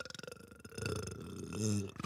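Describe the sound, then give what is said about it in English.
A long, guttural burp rumbles out, rising and swelling for a couple of seconds before cutting off abruptly. “If there was a such thing like as a burping contest, I would win that shit.”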